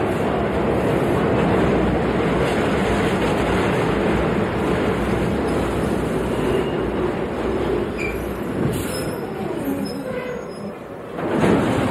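subway train running

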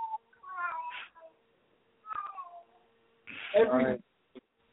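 cat in heat meowing

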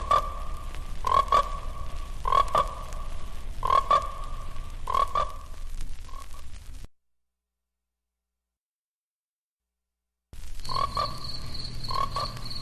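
frogs croaking

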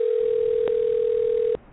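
telephone call ringing tone

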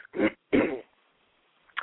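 cough and throat clearing

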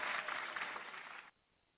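applause clapping

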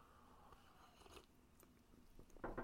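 sipping herbal tea

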